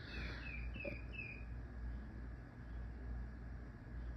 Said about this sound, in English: This bird out here. It is 11 o'clock at night. Like, I thought birds were morning things, dude. This shows you how ignorant I am when it comes to birds. It's annoying.